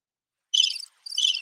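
Two short bursts of high, shrill cricket chirping, one after the other with a brief gap, heard alone against silence with no voices.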